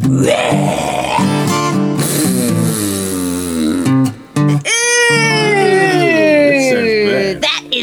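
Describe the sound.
A voice imitates the two-headed, stumpy-tailed snot-a-lot-of-saurus dragon from Australia burping green slime: a long, loud, strained warbling croak with wavering pitch, a brief break, then a second gurgly burst that swoops up and slowly falls away.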